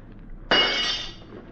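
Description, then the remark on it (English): A single sharp crash of a window's glass being broken, bursting suddenly and loudly, then a bright tinkling shatter that fades out over about half a second; no voices. “I'm going to have to break this, man. Well, I don't care as long as you get to him.”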